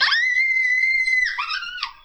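A man's long, piercing, high-pitched scream of pain while grabbing a squirrel, held steady for about a second, then wavering and breaking near the end. Loud, with no talking over it.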